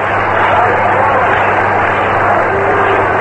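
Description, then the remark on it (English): A baseball All-Star Game stadium crowd applauding Mel Ott of the New York Giants as he comes up to pinch hit, a dense, steady wash of clapping and cheering that holds at an even, loud level for about three seconds over a faint low hum. “Ott is getting a great hand from the crowd. Listen.”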